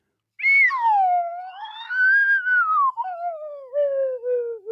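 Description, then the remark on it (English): A slide whistle plays a single continuous, fairly soft tone that swoops down, glides back up, then wobbles gradually lower over about four seconds, with no one talking. “And now I'm going to very quietly play my slide whistle.”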